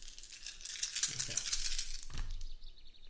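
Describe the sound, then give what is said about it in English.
Dice clatter and rattle in a quick burst of bright, clicky impacts during a tabletop role-playing game, then a final tumble and settle on a table, fairly loud with no talking. “Did I just move that dice?”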